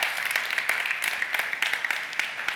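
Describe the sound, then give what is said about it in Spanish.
A crowd gives a round of applause to God, a dense wash of many hands clapping with scattered sharper claps standing out, sustained at an even level throughout. “Oye, ¿cuánto le pueden dar un aplauso a Dios en esta?”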